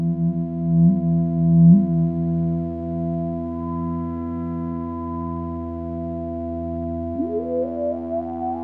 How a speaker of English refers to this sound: And this is called a weather warlock. The weather warlock, yeah. This is a weather-controlled drone synth, and by drone I mean a musical drone. It's tuned to an F major chord. It can be tuned to other keys as well, but right now it's tuned to F major